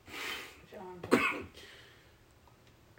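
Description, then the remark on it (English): A rough, raspy throat-clearing cough bursts out, preceded by a breathy exhale and trailing into quiet background noise. “You see, I didn't cough when I was smoking.”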